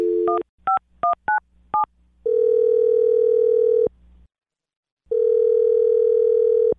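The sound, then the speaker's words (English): A quick run of six touch-tone dialing beeps as a call is placed to a listener on the radio show Brook and Jubal in the Morning, then the steady purr of the outgoing call ringing, two long rings separated by a silent pause, with no voices. “All right, well, I'm going to call her right now and see if we can get an answer.”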